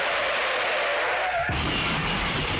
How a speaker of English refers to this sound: Don't you dare. Don't play the car.